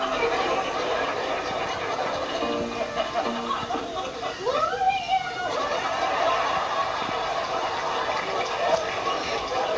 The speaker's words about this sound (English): And this is the very first time a toilet flushing sound effect is used on television ever. And listen to how crazy the audience goes when they hear a toilet flush for the first time on television.